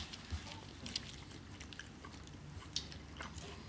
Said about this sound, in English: Make sure we get that good chewing... SFX.